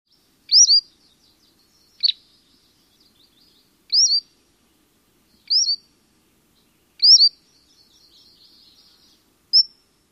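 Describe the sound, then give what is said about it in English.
A tyrant flycatcher gives six short, high, rising whistled call notes at irregular intervals of a second or two, each crisp and clear against silence, with no other sounds. “That's how I like to remember this call note.”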